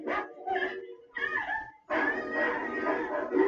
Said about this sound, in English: Oh, there's lots of dogs. I don't know where these other dogs come from. There was a pack of dogs.